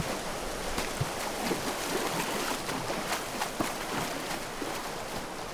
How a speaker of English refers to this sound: You should be reaching the rushing water of Hurst Weir.